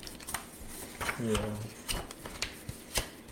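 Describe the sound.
Paper pages being turned close to the mic, a handful of crisp, papery rustles and flicks at irregular intervals, with a brief low murmur of a voice partway through.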